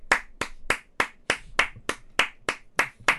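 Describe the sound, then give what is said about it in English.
A single person claps steadily, about eleven sharp, crisp claps in an even rhythm, clear with no voices or other sounds around them, clapping for the new Impact World Heavyweight Champion, Christian Cage. “We are clapping it up, ladies and gentlemen, for the brand new Impact World Heavyweight Champion, the one and only Mr.”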